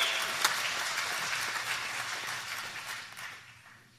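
An audience applauds, a dense wash of many hands clapping at once that holds steady and then gradually tapers off toward the end, heard from a moderate distance with no one speaking.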